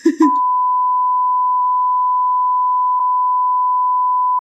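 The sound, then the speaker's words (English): A loud, steady censor bleep: a single unbroken high-pitched tone holds for about four seconds, cutting in right after a brief burst of voice at the start. “I am going to just put a beep sound over all of that.”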